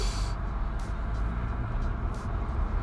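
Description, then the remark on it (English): Steady low rumble of a car interior in slow traffic, having moved about 100 yards in 8 minutes, a constant engine and road drone with a few brief airy hisses passing over it, and no one speaking. “So listen, I've been in the car doing this now for 8 minutes and I've moved 100 yards.”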